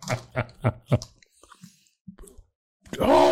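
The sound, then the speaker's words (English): Wet chewing of something soft and sticky like a jelly bean, four quick rhythmic chomps, then a few faint mouth sounds before a voice breaks in at the end. “Oh, it gets worse as I chew it.”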